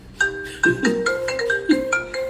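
A mobile phone rings with a bright electronic melody, a run of sustained tonal notes that shift in pitch and repeat in quick phrases, fairly loud with no talking over it.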